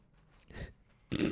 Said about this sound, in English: I'm laughing at the cats. There's cats fighting in a pile of paper. There's so much going on. It's real crunchy. I want to take it away from them. But you'll probably hear, like, hissing soon.